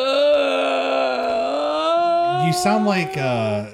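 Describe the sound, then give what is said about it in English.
A long, drawn-out exaggerated yawn with a sustained voiced tone that wavers, then breaks into a gasping, groaning finish; loud, voiced by a person alone. “It's my yawns. This is my yawn.”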